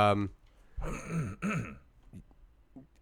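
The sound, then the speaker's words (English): A man clears his throat with a short, rough cough, followed by a couple of gravelly, voiced throat-clearing bursts, then quiet. “No, you don't want to cough ruin the podcast.”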